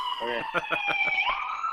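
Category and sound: vehicle, ambulance siren passing by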